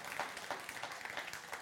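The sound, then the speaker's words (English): A crowd claps together as a clap offering to the Lord, a dense, steady patter of applause, moderately loud, filling a short moment with no voices over it. “I thought somebody would give a clap offering to the Lord for that.”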